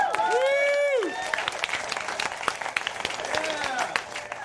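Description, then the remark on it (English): An audience applauds on cue after a singer's final song, with steady, dense clapping throughout, joined by loud rising and falling whoops and cheers at the start and again near the end. “Okay, hold on. Do applaud again.”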